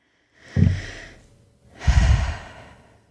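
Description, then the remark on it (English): Two deep, breathy breaths during a breathing exercise, a strong inhale with the rib cage expanding followed by a longer exhale, each with a noisy rush of air, with no talking. “We'll feel the rib cage expand on the inhale for 5, hold for 2, and exhale for 7.”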